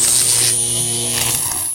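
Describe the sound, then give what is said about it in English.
A steady electrical hum of the character Liberté crackling with electricity, with layered low buzzing tones and a thin high-pitched whine, with a rough crackling hiss over it, loud and continuous for under two seconds. “Liberté, she's crackling with electricity.”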